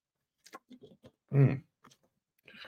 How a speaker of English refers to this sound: I need a sip of water, excuse me.